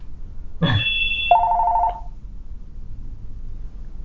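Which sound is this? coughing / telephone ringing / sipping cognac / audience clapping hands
telephone ringing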